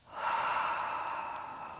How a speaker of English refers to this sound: Also, slowing down your breathing, making sure that you're breathing in through your nose and then even slower out of your mouth.